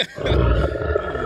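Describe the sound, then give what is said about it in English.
A loud, deep guttural grunt that sounds like a drawn-out burp, lasting about a second and rumbling low throughout, with no talking over it. “Oh, it sounded like somebody burping.”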